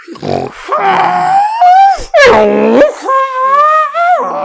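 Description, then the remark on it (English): A voice imitates the mournful whistle-honk of the Star Wars droid R2-D2: a string of wavering, tonal wails and moans that slide up and down in pitch, loud and sustained, with brief breaks between. “Can do your best impression of a mournful whistle honk.”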